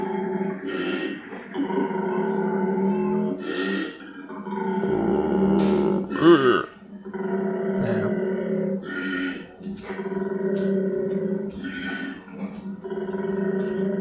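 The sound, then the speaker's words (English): A male koala's mating bellow, a loud, deep, rasping drone that alternates snore-like inhalations with belching, grunting exhalations in a steady rhythm, continuing without pause for about fourteen seconds. “You can bring up a koala's mating. You can search that, maybe.”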